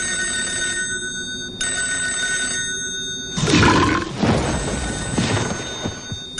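telephone ringing

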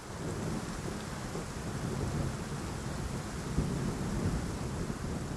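thunderstorm with rain

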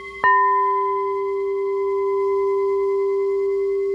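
crystal singing bowl ringing

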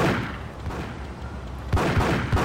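video game gunfire

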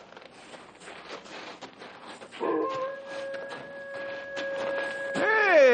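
dog barking and yipping

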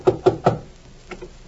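knocking on a door

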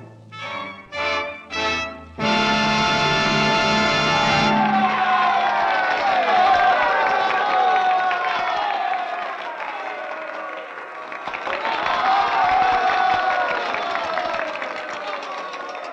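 audience applause and cheering

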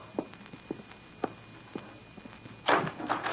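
door being opened

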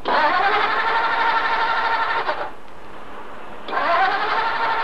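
car engine cranking

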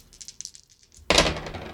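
three dice being rolled

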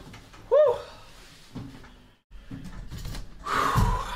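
chair being pulled up

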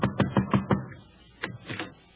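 knocking on a door

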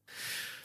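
man panting heavily

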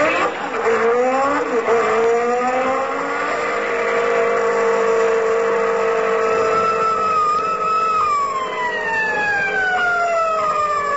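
car speeding past

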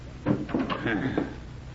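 door being shut

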